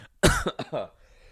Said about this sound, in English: I'll edit that cough out.